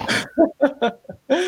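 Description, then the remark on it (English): A dog acting up whimpers and whines in a string of short, uneven vocal bursts, several quick yelps spaced across a second and a half, ending on a longer whine. “these dogs, these animals are like kids, man. You got to watch them every 2 seconds. Yeah, mine's acting up today, too.”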